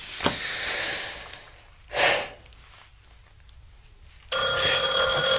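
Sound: doorbell ringing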